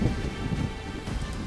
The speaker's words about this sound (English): And y'all are able to navigate out of this heavy storm and gale with ease.